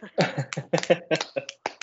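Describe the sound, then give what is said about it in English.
A short run of hand claps welcoming back a returning guest, roughly eight or nine sharp, bright slaps in an uneven rhythm, fairly loud, with a faint tonal murmur running underneath. “Yeah, give him some claps.”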